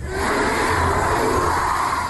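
A large crowd at Nick Cannon's Wildin' Out in Atlanta screams together in a loud, sustained roar, many voices blending into one continuous shouted chant that fills the whole short stretch.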